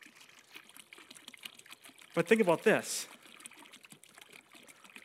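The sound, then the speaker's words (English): Water pours steadily into a container, a continuous faint splashing trickle that runs through the whole moment while a man briefly speaks over it in the middle. “The cleaner and cleaner the water gets.”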